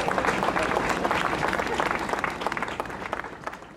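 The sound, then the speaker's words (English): A crowd breaks into steady applause for a panel of speakers, dense clapping filling the whole stretch before gradually thinning and tapering off toward the end. “Can we get a round of applause for our panelists?”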